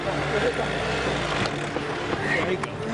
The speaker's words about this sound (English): One of the SUVs didn't make it. Now we just have two trucks and another SUV. And ours is struggling pretty bad right now. This has been just a brutal journey into the mountains,